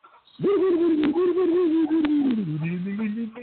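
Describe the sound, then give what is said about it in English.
A single sustained organ note holds steady with a slight waver, then slides lower near the end, with a few faint clicks underneath; no one speaks. “You hear the organ?”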